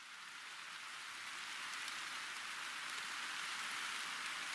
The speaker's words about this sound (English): The rain didn't quit. It was like that in the Northwest. Unrelenting. Constant.